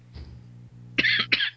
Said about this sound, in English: And I came back through someone's microphone then. Sorry, I was coughing. Yeah, I still came back through someone's microphone.